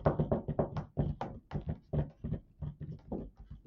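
A woman typing on a keyboard: a steady run of quick, dry clicks and taps in an uneven rhythm, fairly quiet, with no voices over it.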